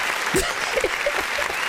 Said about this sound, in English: wait, we need some applause. Hold up. There we go.